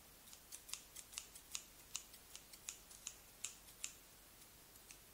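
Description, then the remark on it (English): Big scissors snip steadily through wrapping paper, a quick even run of about fifteen crisp cuts over five seconds, fairly quiet, with no one talking. “Nice big scissors.”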